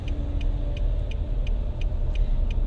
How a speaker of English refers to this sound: I just hate traffic. I hate driving in traffic.